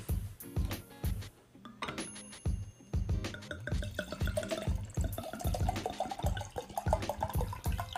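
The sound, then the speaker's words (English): Wine glugs steadily from a bottle into a glass for a first pour before tasting, with a rapid rhythmic gurgle and a pitch that rises as the glass fills. No one speaks. “So here goes the first pour and sip.”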